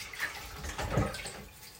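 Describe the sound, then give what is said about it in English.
Hands made oily from cutting up smoked mackerel swish and splash in a basin of water, a soft, continuous sloshing with small trickles, moderately quiet, with no talking. “Now, my hands are a little bit oily, so before I do anything else, I'm going to put those into the water.”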